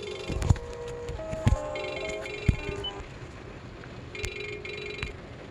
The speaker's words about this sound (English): Sorry about that. My phone always be going off.